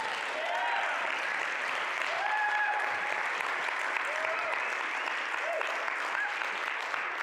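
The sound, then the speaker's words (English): A church audience claps steadily for a man coming up to be commissioned and ordained into public ministry, a dense, even wash of applause lasting several seconds, with a few cheers and whoops rising over the sustained clapping. “Y'all can clap for him.”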